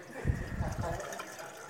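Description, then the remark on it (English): Blue-dyed water pours briefly into a glass carafe, a gurgling rush lasting under a second before fading into a quiet, hissy room tone. “We're going to put some water in there.”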